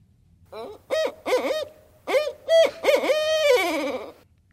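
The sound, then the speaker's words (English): A barred owl gives its rhythmic 'who cooks for you' call, several clipped notes followed by a longer, drawn-out descending hoot, clear with no other sounds around it. “So that is what a lot of people will know as the who cooks for you, who cooks for you all.”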